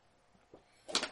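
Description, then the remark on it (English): A door creaks open: a faint knock, then a short, bright scraping creak about a second long, with no voices. “Creaks open.”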